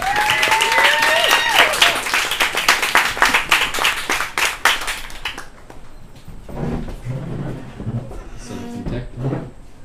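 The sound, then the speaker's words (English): An audience at a presentation applauds a presenter with dense, rapid clapping for about five seconds, then it fades into quieter murmuring and shuffling with a few scattered sounds. “Everyone give her a round of applause.”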